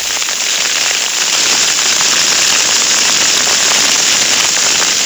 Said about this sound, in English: In the quiet of a Borneo evening, only the crackle of flames can be heard. This fire is consuming a banana plantation on the coast road to Samarinda, provincial capital of East Kalimantan.